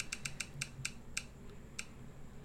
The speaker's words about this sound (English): Yeah. Here we go. Wheel time again. Spin, spin, spin.